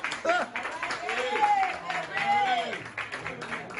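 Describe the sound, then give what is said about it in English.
A comedy show audience applauds steadily with dense, rapid clapping as a comic is brought to the stage, while voices call out and speak over the noise throughout. “Let's hear it for him. Put your hands together. Make you feel good. Give me a clap.”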